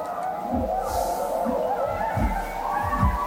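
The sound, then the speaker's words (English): Rhythmic, muffled low crunching repeats roughly every second as two horses steadily chew hay, over a constant droning hum in the background. “They're chewing hay.”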